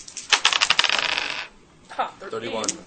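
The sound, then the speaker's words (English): Dice clatter and tumble across a hard tabletop for about a second, a rapid burst of bright clicks, followed by a brief murmur of voices. The dice are rolled during a game by players whose characters have handguns. “Okay, if you have a handgun, roll dice and don't roll too badly.”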